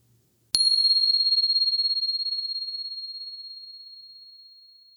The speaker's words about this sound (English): And here comes a bell.